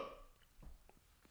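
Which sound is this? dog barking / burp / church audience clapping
burp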